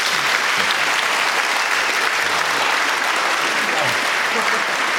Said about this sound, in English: Thank you. Give them another clap.